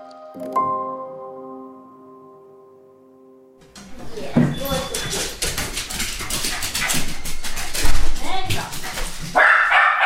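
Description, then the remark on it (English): A small dog yaps and yips excitedly in quick, repeated bursts, running circles around its owner in her living room as she sets up her French horn for practice, amid scuffling movement, after a few seconds of a steady, sustained musical tone. “little dog runs circles around her.”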